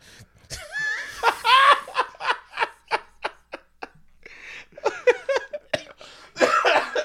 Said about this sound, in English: Cough laugh.